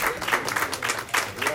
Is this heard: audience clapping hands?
yes